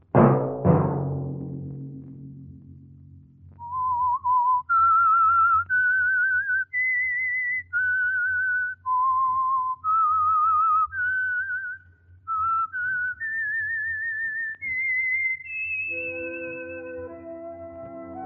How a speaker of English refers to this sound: Let that whistle be your signal each Sunday for the Signal Oil program, The Whistler.